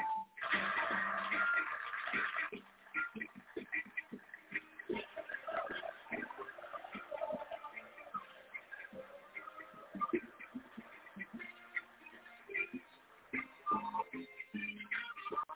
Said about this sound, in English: Even the cows are here. That's right. The cows came in for this show.